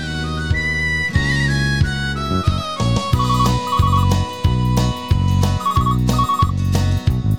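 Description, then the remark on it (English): A mobile phone ringtone plays a bright, repeating electronic melody of short, bouncy notes over steady chords, loud, continuous for several seconds with no voices. “Oh, my girlfriend has a mobile phone.”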